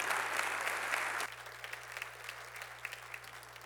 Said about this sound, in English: So I want to not take him any more of his time, but invite my friend, and would you please give him a round, huge, loud round of applause.